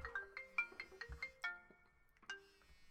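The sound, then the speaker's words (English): A mobile phone ringtone for an incoming call plays a bright, quick melodic tune of repeated electronic notes, clear, with no one speaking over it. “You've got a phone call.”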